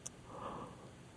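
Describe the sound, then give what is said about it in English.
A single quiet, breathy yawn, a drawn-out airy exhale that swells and fades over about a second, with no talking. “Yawning at you.”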